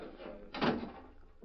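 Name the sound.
door being closed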